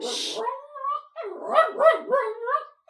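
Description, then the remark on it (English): A dog that had been lying in bed gets up and barks in a quick string of short, yelping, whiny barks, fairly loud, right after a brief burst of hiss at the start. “He's just in bed, and then he got up and started barking.”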